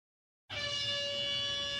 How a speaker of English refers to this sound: 40 seconds per question. Otherwise, I'm getting buzzed. We've got a big buzzer. All right. Okay. Should we try the buzzer